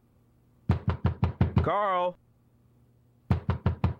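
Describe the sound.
Loud, rapid pounding knocks on a door: a burst of five heavy thumps, a man's voice briefly calling out, then a pause before four more quick knocks.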